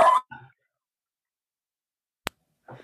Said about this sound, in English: That poor dog needs a run. Oh, your dog needs a run. He's saying, hurry up.